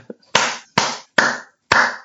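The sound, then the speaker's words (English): Four loud, sharp hand claps right up close to the microphone, spaced unevenly, each with a brief ringing decay, after a small faint sound at the start. “Don't clap up by the mic.”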